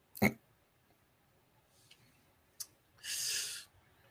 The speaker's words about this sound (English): Hold on, I need to take a sip.